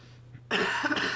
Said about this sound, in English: I have to cough.